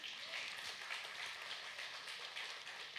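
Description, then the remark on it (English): An audience applauds: dense, steady clapping from many hands that holds evenly for the whole stretch, with no voices over it. “We can clap for that.”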